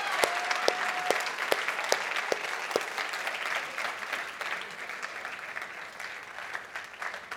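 A crowd breaks into sustained applause, dense clapping from many hands at a steady level that gradually thins slightly toward the end, with no voices standing out.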